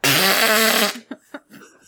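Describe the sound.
A loud, buzzy fart noise blares for nearly a second, followed by a couple of short bursts and faint murmuring.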